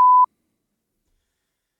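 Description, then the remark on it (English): A single short censor bleep covering a spoken guess of a footballer's name in a quiz, a steady pure tone around a quarter second long, sounding clearly and then cutting off into silence. “So we'll get that beeped out for those at home.”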